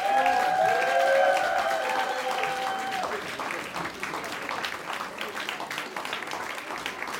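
A church audience at Renew Life breaks into sustained applause welcoming a speaker, dense clapping filling the room, with a few tonal whoops and cheers rising over it in the first seconds before the clapping continues steadily.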